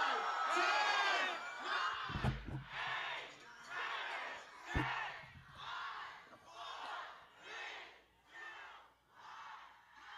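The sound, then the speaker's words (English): A crowd cheers and whoops loudly at a party with loud club music and balloons, high excited voices surging in repeated waves, with a couple of sharp thumps early on before the cheering fades slightly toward the end; recorded as a phone video. “Yeah, everybody was going nuts.”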